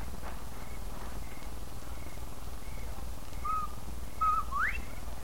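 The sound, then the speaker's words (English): A person whistles an imitation of a bobwhite quail call: faint short whistles, then a clear two-note phrase ending in a sharp upward sweep, over a low steady background hum. “When you're ready, whistle like a bobwhite.”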